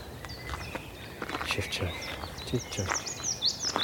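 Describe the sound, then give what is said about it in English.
Fluty, melodious blackbird song carries through from the background on a peaceful bike path, phrases overlapping with other bird chirps, accompanied by soft scattered rustles and footstep-like crunches. “That's the willow warbler, and that lovely in the background, everywhere, that sultry sound of song of blackbirds.”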